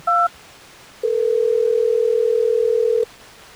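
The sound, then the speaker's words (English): A brief keypad beep, then a single steady ringback tone lasting about two seconds over a telephone line as the Hot 101.5 radio show places a call. Clear and fairly loud, with no voices. “Let's go ahead and get him on the phone real quick.”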